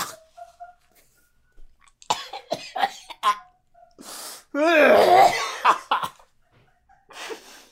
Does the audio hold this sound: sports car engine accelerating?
no